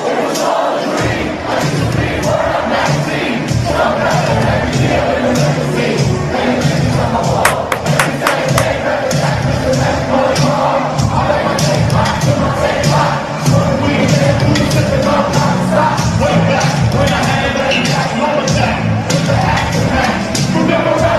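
A whole Brooklyn neighborhood sings a song together from their windows, loud and steady for the whole stretch, with a rough crowd-like blend of cheering and shouting mixed into the singing.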